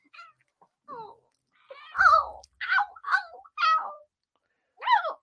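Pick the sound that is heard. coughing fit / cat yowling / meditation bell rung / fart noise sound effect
cat yowling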